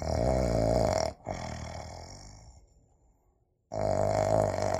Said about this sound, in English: Oink, oink! Little pig still sleeps.